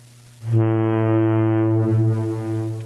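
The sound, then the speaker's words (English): A deep, steady ship horn blast sounds out after a short low rumble, holding one loud, rich note with strong harmonics for about two seconds before easing off slightly. “Wait, let me get my boat.”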